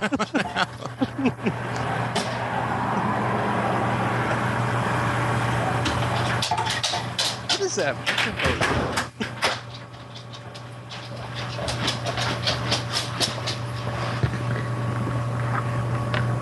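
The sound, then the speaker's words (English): A steady, droning mechanical rumble, like a news helicopter and heavy machinery such as a bulldozer outside the front door, runs throughout with scattered clanks and rattles, moderately loud and continuous. “I think I hear a news helicopter and maybe a bulldozer.”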